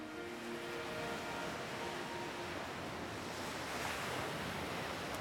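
Steady ocean surf washes against a beach, a broad continuous roar of breaking waves with a touch of wind, swelling slightly louder toward the end. No voices are present.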